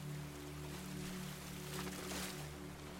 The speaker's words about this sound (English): The noise of the ocean gets slightly louder as the daydream ends, and Elena gradually comes back to the room of the sound bath. She realizes that the ocean drum is still being played.